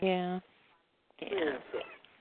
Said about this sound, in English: Did I hear a kitty cat? It sounded like a kitty. Yeah. Yeah, but she just loves to sit right on top of the keyboard.